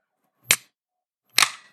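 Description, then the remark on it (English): Two sharp, loud pops about a second apart, each trailing off in a brief fizzy hiss, like beer cans or bottles being cracked open, one a Key Lime Pie beer from Bang Bang Pie Works, with no talking. “And then I am drinking... Bang Bang Pie Works. Key Lime Pie, the beer.”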